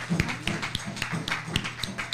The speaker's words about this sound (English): Ashe, let's put a hand clap on that.